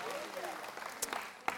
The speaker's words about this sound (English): Well, give them a round of applause as they go back to their seats this morning.